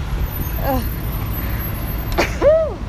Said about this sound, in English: Oh, I gotta sneeze.